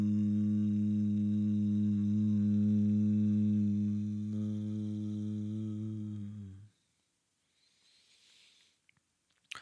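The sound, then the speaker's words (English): A single long, low meditative 'hum' chant for the throat chakra, held at a steady pitch for several seconds, rich and resonant, then cutting off into quiet followed by a soft breath. “And the sound is hum.”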